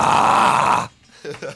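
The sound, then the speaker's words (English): A person does a loud, raspy growling roar imitating a dinosaur, sustained for nearly a second, then breaks off into brief quieter vocal sounds. “Let's get your dinosaur impression because I don't remember from last time.”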